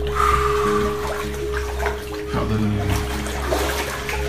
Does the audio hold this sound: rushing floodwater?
yes